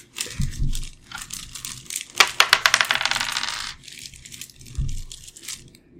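A d3 die is rolled, clattering across a hard surface in a quick burst of bright, rattling clicks that tumble and settle over about a second and a half, with soft thumps of handling before and after; it comes up two.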